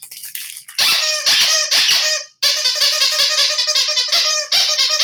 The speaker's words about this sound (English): That's Brandy's new sunshine doll. Playful thing. Squeak it.